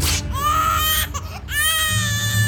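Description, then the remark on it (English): The baby Achilles wails as he wriggles free from Peleus's grip after being pulled out of the Styx, in two loud, high-pitched bursts with a brief catch of breath between them, the cries strained and tonal, with no one talking. “Little Achilles wailed and wriggled free from Peleus's grip.”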